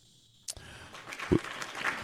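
crowd applause

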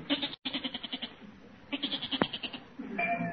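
goat bleating

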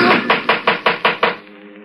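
knocking

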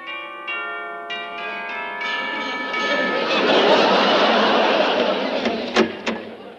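door chime ringing

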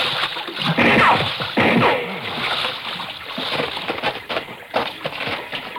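splashing

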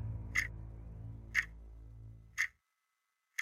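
ticking sound

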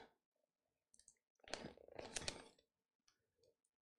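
clicking

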